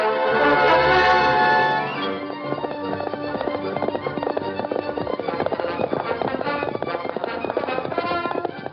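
The Lone Ranger's horse Silver gallops hard at breakneck speed at sunset in pursuit of an outlaw, its hooves pounding in a rapid, relentless rhythm, following a short sustained tonal sound at the start.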